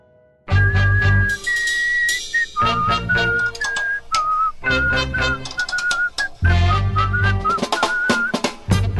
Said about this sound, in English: Here, whistle it with me.